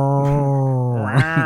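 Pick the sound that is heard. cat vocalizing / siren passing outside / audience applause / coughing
cat vocalizing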